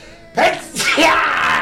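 A loud, close sneeze bursts out suddenly: a sharp breathy onset followed by a forceful, noisy exhale that trails off quickly, with no talking during it.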